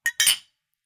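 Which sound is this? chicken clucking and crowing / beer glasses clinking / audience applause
beer glasses clinking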